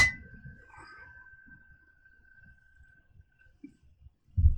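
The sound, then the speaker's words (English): Glasses clink together once in a toast, leaving a clear, bright ring that slowly fades over a few seconds, with soft low bumps and handling noise around it. “I'll raise a glass to that. Here's to that.”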